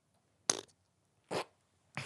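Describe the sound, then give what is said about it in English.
Three short, sputtering fart noises, each a brief breathy burst with pauses between them, moderately loud, with no one talking. “What was that? I farted.”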